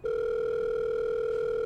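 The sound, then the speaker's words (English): A telephone ringback tone sounds while a call is placed, a steady, unbroken electronic hum from line to line, fairly loud, with no voices over it. “All right, come on, Gerda, answer the phone.”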